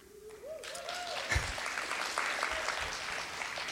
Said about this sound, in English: That's my story, and I think the applause suggests that this is what we do, right?